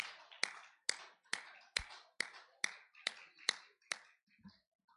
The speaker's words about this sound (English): All right, let's give the Lord a final hand clap while you make your way back to your seats, everybody.